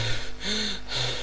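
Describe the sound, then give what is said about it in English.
Heavy breathing: a few loud, airy inhales and exhales follow each other in quick succession, with no talking. “And the real reason is, like, when I'm editing these, I can hear my breathing. my heavy breathing”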